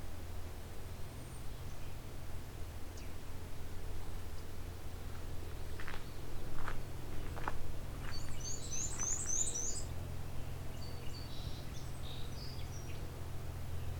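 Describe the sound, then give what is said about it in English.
A songbird, out of sight, sings a few quick, high chirping phrases, fairly faint, over a steady low rumble of road traffic that runs through the whole recording. “He flew off out of sight, but still in a range I can hear.”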